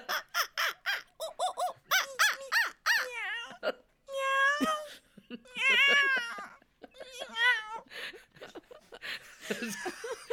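Toy monkey and toy cat sounds trade back and forth: a run of rapid, chattering electronic squeaks, then longer wavering meows and wails, loud with brief pauses between bursts.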